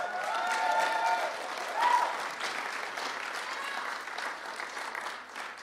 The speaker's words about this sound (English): I feel like the way we're clapping, we're at a golf tournament. Can you just be excited for a minute what God is doing?